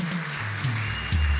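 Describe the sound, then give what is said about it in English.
A crowd claps together in a dense, steady wash of applause lasting the whole moment, with low sustained instrumental tones humming underneath and growing slightly louder near the end. “Come on, let's give them a hand clap right now one more time.”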